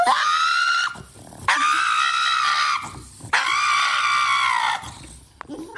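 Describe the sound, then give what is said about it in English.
A pug named Pug, terrified of nail clippers, lets out three long, loud, high-pitched screams during nail clipping, each lasting over a second with brief gasping pauses between, sounding shrill and almost human in its distress. “That actually is the dog making that sound.”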